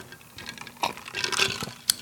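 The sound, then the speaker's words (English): Drinking glasses raised in a toast clink and knock together right up against the microphone, a scatter of bright, ringing taps over about two seconds, ending with one sharp clink. “It sounds weird when you glass gets close to the microphone.”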